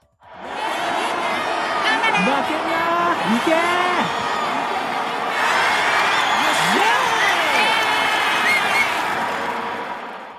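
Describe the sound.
A large stadium crowd roars continuously, many voices cheering and shouting at once with applause mixed in, loud and sustained from start to finish with individual yells rising above the din.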